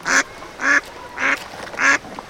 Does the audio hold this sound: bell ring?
no